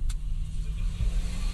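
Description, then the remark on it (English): A car rolls steadily down the middle of a road, with people pulled off to the side watching fireworks; its engine and tyre rumble form a constant low drone, with a brief faint higher click early on and no voices. “We're driving down the middle of the road because people are pulled off to the side watching the fireworks”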